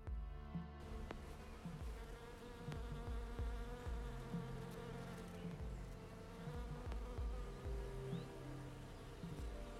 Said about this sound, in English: was just alive with bees. Like the whole tree sort of, it almost felt like it was kind of vibrating. It was quite stunning. I tried to record it. I'm not sure if you can pick it up, but let's just have a quick listen to this cherry tree and the bees.